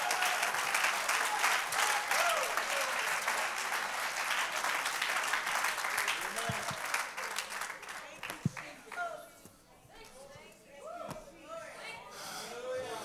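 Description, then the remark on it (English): An audience claps hands for the Lord during a sermon, in a dense, steady burst of applause that thins out after several seconds into scattered claps, with voices rising as it fades. “Let's clap our hands one more time unto the Lord.”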